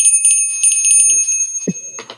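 bell ringing

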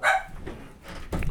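dogs barking

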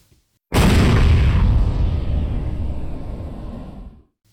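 cannon firing boom

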